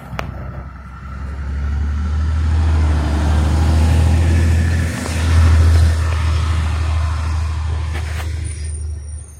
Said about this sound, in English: Trash truck coming.